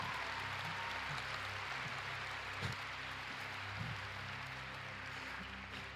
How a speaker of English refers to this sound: You know, in fact, if that's you, we're just gonna clap for God for that, because that's a huge deal.